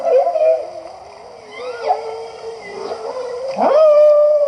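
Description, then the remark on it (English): A humpback whale's song: long, moaning tonal calls that glide up and down, with a sharp rising whoop near the end, loud and continuous with no voices. “Now this is a humpback whale sound.”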